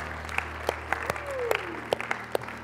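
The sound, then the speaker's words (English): A small group gives the Lord a hand clap for his word, with sparse, uneven hand claps, a dozen or so distinct claps over a few seconds, over a steady low hum with no talking. “Would you give the Lord a hand clap for his word today?”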